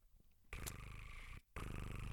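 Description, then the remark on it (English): A person imitates a cat's purr, making a loud, rolling buzz in two long bursts split by a short breath-like pause, with no other talk. “All right, imagine you're not making that noise because you're a stressed out cat.”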